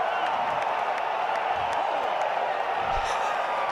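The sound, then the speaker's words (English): A large golf crowd at the 18th hole roars with steady, loud cheering and applause after a 72-foot walk-off putt, a dense continuous wash of noise with scattered whoops, holding constant throughout. “The crowd is going bananas.”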